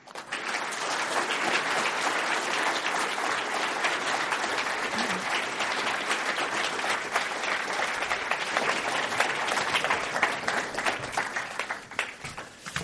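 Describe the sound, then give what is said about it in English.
A large crowd applauds steadily for about twelve seconds, welcoming Brian Greene and moderator Kishore Hari at an evening program, a dense, even roar of many hands clapping that holds its level before thinning out at the end. “I'll keep on clapping, please.”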